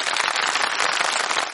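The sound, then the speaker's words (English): A burst of applause sound effect, provided by www.freesfx.co.uk: many hands clapping in a dense, steady crackle that stays loud throughout, then drops off quickly at the end. No voices. “Where did that applause come from?”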